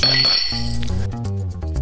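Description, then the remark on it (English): Glasses clink together once in a toast with a bright, ringing chime that hangs for a moment, then fades as a tonal musical passage takes over. No one speaks. “Cheers.”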